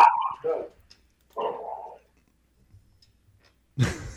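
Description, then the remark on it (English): A dog standing on a counter barks three times in separate bursts spaced a second or two apart, fairly loud, with silence between them and no talking. “Your dog's on your counter up behind your”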